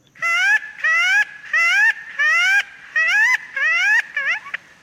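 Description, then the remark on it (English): A fresh, furry peppermint tree leaf blown between the palms imitates a young magpie (korobardi) calling to its parents for food: six loud, reedy, rising squeals in a steady rhythm, ending in a few quicker, shorter chirps. No one speaks. “he showed me how to make bird calls using a peppermint tree leaf between his palms.”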